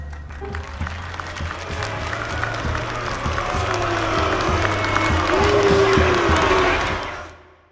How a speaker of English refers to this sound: …, live in Cook County Jail from 1971. You know the key to a truly great live album? Track one should consist of the crowd booing the sheriff. Our own beloved Sheriff Woods.